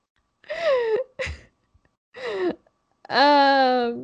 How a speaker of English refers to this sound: Sorry, I started a yawn fest. I don't know why I'm yawning.